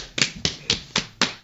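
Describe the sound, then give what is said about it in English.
Hands slap against knees five times in a quick, steady rhythm, each smack sharp and fairly loud with a short fleshy thud, and no voices in between. “Is the knee slap thing a thing?”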